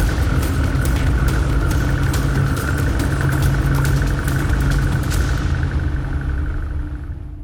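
A boat engine rumbles loudly and steadily, a constant motor drone with no voices, its brighter tones thinning out over the last couple of seconds as it pulls away from the dock.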